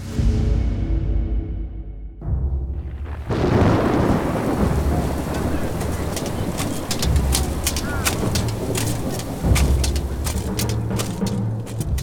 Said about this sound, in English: The storm appeared over Londinium almost without warning, coalescing from a dozen smaller squalls.